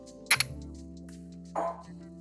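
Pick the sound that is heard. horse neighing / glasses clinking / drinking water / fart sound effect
glasses clinking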